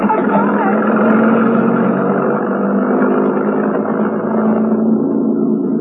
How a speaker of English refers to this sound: There's a truck parked outside the stage door. Hey, it's coming straight down the alley.